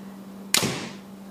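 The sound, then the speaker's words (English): A single arrow shot from a compound bow, a sharp snap followed by a brief fading whoosh, with a steady low hum running underneath throughout. “I was just really excited to get a few arrows.”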